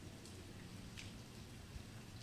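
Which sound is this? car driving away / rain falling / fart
rain falling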